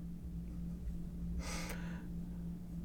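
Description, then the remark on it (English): A single quick, muffled cough, breathy and fairly soft, set against a steady low electrical hum with no talking. “I just had the cough very quickly to send.”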